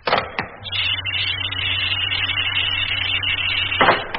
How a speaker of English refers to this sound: And open the door.